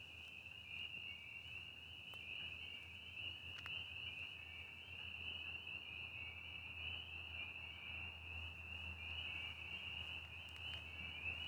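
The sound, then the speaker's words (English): A dense nighttime chorus of spring peepers in March rings steadily like jingling sleigh bells, with a low rumbling trill of toads far off beneath it. No one speaks. “Sounds like sleigh bells, the spring peepers, and some toads cackling off in the distance.”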